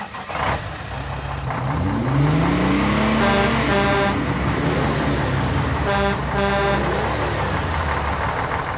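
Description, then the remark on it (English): About four different vehicle engines rev and roar in quick succession, their pitch climbing, with sharp horn-like blasts cutting in twice. Loud throughout, with no talking. “Another fun fact, there's actually like 4 different engines in that little sound bite.”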